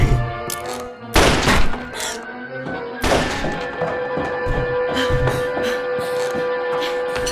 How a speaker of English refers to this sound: what was that noise? Were those gunshots?